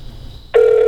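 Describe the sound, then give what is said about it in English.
A telephone ring from a call placed to the speakers' own number cuts in abruptly halfway through, a loud, steady electronic tone that holds to the end, following a faint high whine and quiet background. “I'm calling us because I want to see.”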